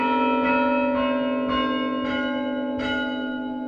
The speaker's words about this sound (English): It's a wooden console with nine wooden handles sticking out, each one connected by a cable to its corresponding bell up in the tower